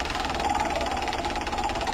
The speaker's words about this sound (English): Spin the bejesus out of the wheel. Yeah. That's a big one,